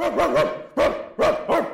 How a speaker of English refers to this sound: wasn't a very big dog, but her bark was giant. Her head was back and her eyes were closed.